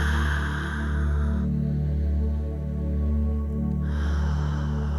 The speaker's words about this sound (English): Breathing. Continuing to focus intentionally, we want to oxygenate ourselves.